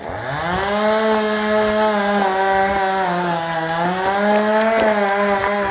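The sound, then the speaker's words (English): A small chainsaw, held in one hand by a person in trainers and shorts balancing halfway up a tree during forestry work in Spain, runs loudly and continuously as it cuts, its buzzing two-stroke whine holding a steady pitch with small dips and rises. No one speaks. “People in trainers and shorts balancing halfway up a tree with a chainsaw in one hand.”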